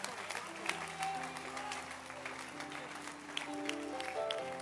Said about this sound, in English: Clap your hands for him then.